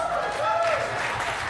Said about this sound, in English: He brought me a beer. Clap for that.